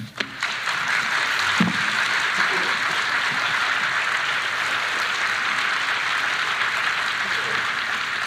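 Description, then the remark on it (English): Sustained audience applause as a poet goes off stage after ending a reading with a poem, a dense steady patter of many hands clapping at an even loudness throughout, with no voices standing out above it. “It's the applause of him going off stage.”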